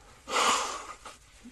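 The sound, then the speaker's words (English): A single loud nose blow by a person with a slight cold, a harsh airy honk lasting about half a second, trailing off into a couple of faint sniffles. “So, pardon me, I'm batting a little bit of cold, so I'm going to blow my nose for a second.”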